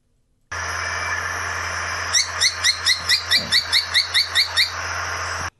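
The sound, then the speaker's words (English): A Kempfer's tody-tyrant, a tiny bird from Brazil, gives a rapid series of about twelve sharp, evenly spaced chirping notes, clear over a steady background hiss, with no talking. “This first one is the Kempfer toady tyrant.”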